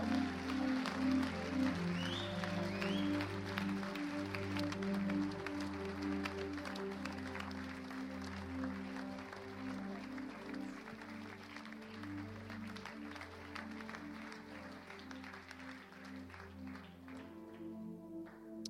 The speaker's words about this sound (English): And if you believe it, give the Lord a clap offering. God bless you.